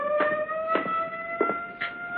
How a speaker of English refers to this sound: First the siren must stop. It offends my ears.